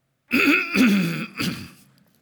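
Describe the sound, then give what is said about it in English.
A loud throat clearing in three rough bursts, rasping and guttural, lasting about two seconds with no speech around it. “What I need to do is clear my throat.”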